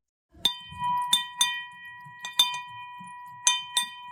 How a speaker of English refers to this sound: So at Hudson Kitchen, we have what we call the money bell that we ring when we're celebrating something.